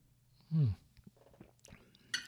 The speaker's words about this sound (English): I'm going to take a sip of tea here.